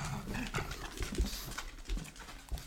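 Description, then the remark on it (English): An older pug with dementia barks randomly at shapes and shadows in the house at about 3 a.m. It gives a handful of short, gruff bursts spaced about half a second apart, with no one talking and a faint rustling background. “He has dementia, poor fella, and he'll just start barking randomly at shapes and shadows in the house.”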